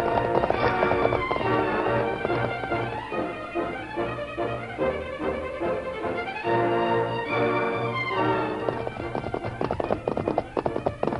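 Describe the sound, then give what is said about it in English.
Galloping horse hooves pound in a fast, steady rhythm, loud, over a bed of dramatic music that runs the whole time with no talking. The horse is the white horse Silver, carrying two riders, one of them the Lone Ranger. “Take you on my horse! We'll outrun them!”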